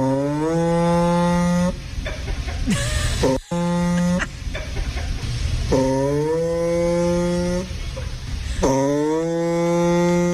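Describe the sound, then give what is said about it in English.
A vehicle makes buzzy, raspy farting noises in repeated bursts, each starting with a quick pitch rise and holding a low droning tone, broken by brief sputters. No one speaks. “Customer states their vehicle is making farting noises.”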